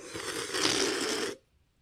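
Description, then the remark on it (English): Someone sips seltzer water: a steady, bright fizzing hiss with fine crackle lasts just over a second, swelling slightly in the middle, then cuts off abruptly into quiet. No one speaks. “I just sipped my delicious seltzer water.”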